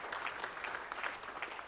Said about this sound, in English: Give Jesus a hand clap of praise today in his presence.